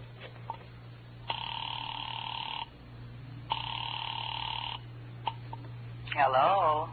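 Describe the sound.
Two long ringback tones purr through a phone line after a number is dialed, each lasting over a second with a pause between, thin and filtered, followed by a click and a voice answering.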